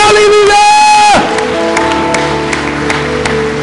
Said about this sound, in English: Come on, give the Lord a clap offering. Say, thank you, Jesus.